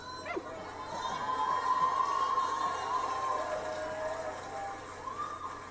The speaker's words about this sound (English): See, I can hype up a crowd. This whole team, especially the YWAM crowd, they can all yell and get everyone yelling.